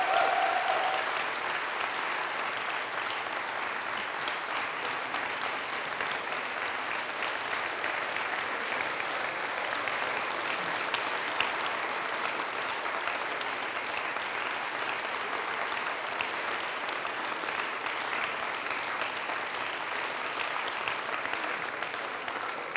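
An audience on a campus gives a standing ovation for a missionary staff team, sustained, dense applause, a steady wash of many hands clapping at an even loudness for over twenty seconds without letting up, with no voices standing out.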